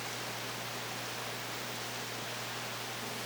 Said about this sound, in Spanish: Espero que se estén entendiendo más o menos bien ahí por la lluvia.